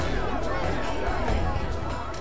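A crowd of citizens in Athens gathered for a public appearance of the inventor Daedalus murmurs steadily, many overlapping voices blending into a continuous, indistinct babble at moderate loudness, with no single words standing out.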